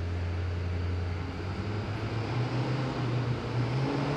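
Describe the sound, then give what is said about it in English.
A loud engine drones steadily, its low tone climbing gradually in pitch as the driver revs it up under throttle over a few seconds on an acceleration section of a driving test, with no voices. “So here we are on an acceleration.”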